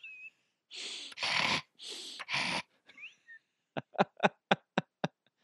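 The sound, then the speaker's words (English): Several loud, heavy breaths drawn in and pushed out, followed by a quick run of about seven sharp, rhythmic gasps like panting, with no talking. “Man, I need to start breathing through my nose holes.”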